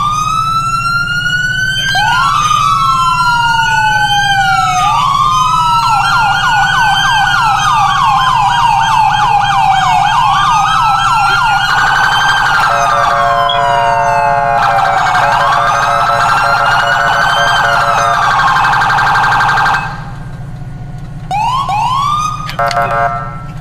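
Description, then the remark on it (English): A loud emergency vehicle siren in a video game cycles through several tones, wailing sweeps turning into rapid yelps and steady high-low phases, running continuously with a low engine-like hum underneath before cutting into short chirps. “Oh, for those who are wondering, I did update the sirens, so yeah.”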